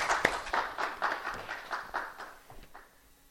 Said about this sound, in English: So let's give him a big round of applause if he can.